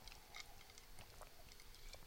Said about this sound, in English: Hopefully the mic's picking up our sips.